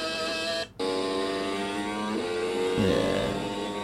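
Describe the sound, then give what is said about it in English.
A Mercedes Formula 1 V6 turbo hybrid racing engine revs hard with a dense, buzzing drone, briefly cutting out as if shifting gears, then climbing again in pitch. Loud, with no voices. “And these are V6 turbo.”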